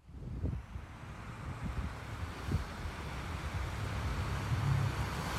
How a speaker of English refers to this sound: Metadata check. April 15, 2021, 5:57 p.m., California, Santa Cruz County, Santa Cruz, Westcliff Drive, Dog Beach this time. There's light winds, close to no clouds, 64 degrees Fahrenheit, and it's real sunny out.